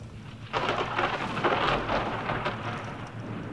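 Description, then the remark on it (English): Steady, hissing rain starts abruptly and pours on, with a low rumble of thunder rolling underneath; no one speaks. “The weather has let up a little bit, but I just checked satellite imaging and there's a strong low-pressure system that's hovering and watching us about 100 miles south.”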